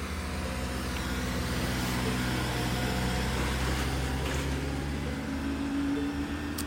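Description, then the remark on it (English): A large council truck rumbles past by a disused bowling pavilion, its deep steady engine drone filling the low end with a slight rise as it passes, with no talking over it. “So, there's a big council truck going past.”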